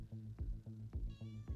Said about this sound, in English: Whose cat is that? That's Boo Boo. Boo Boo, do you wanna play?